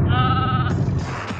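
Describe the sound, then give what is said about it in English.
A goat lets out a single loud, wavering bleat lasting well under a second, followed by a rough, noisy background with no one speaking. “And then there's two Australian dudes and a goat in the back seat, and it's implied they're going to fuck all three of them.”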